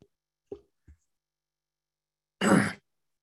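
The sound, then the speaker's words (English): A single loud sneeze bursts out after a quiet pause, preceded by a couple of soft, short breathy catches, then silence. “Hold on a second while I sneeze.”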